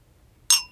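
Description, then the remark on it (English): A single bright clink of wine glasses touching in a birthday toast, with a short ringing tone that fades quickly, fairly loud against an otherwise quiet background. “Cheers. Happy birthday, Heidi. Cheers. Cheers.”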